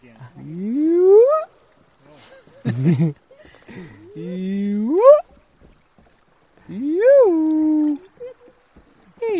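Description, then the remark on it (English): In the afternoon, while floating along on a wilderness trip, a man's voice imitates animal calls, with a low grunting hippo-like burst and several rising, whooping hyena-style cries, each long and fairly loud, separated by short pauses. “entertains us with animal calls. Another hippo. Hyena. Hyena again.”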